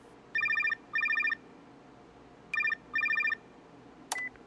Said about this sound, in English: Reason's cell phone rings.